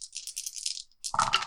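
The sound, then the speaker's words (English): Dice rattle in a quick, bright shake for most of a second, then clatter down onto a hard surface with a fuller, heavier tumble. No one speaks. “Well, roll the dice, and if you haven't thought of it in time.”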